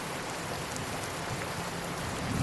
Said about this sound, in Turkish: Suratıma bir yağmur damlası çarptı. Gökyüzü bir anda ipinden boşanıp etrafı ıslatmaya başladı.